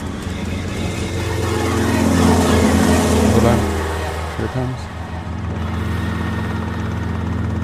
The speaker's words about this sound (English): Oh, it's our copter.